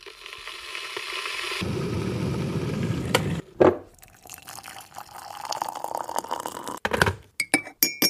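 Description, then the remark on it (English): Water pours steadily for a few seconds as a cup of tea is made, then a sharp clink of china rings out, followed by quieter rustling and a quick run of bright, ringing spoon-on-cup clinks at the end. “Let's first start by making ourselves a nice cup of tea and get ready for the episode.”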